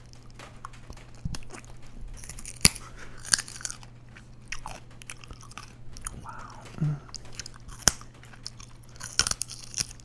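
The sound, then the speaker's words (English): Crisp crunches of someone chewing a crunchy baby carrot, sharp bites spaced irregularly over a low steady hum, with a brief spoken exclamation partway through. “Alright, here's my rendition of a baby carrot being chewed.”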